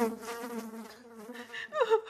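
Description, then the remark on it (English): A high, whining mosquito buzz hums steadily for a couple of seconds, then rises and wavers near the end; it sounds like a human voice imitating the insect, fairly loud, as a Mosquito character comes forward to speak at a mock funeral for House Fly. “We're going to hear from Mosquito.”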